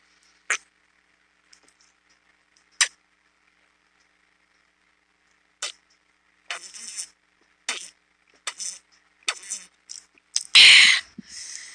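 Someone gulps water in a string of short, wet swallowing clicks, sparse at first and then quickening into a rapid run that ends in a louder, rougher gulp.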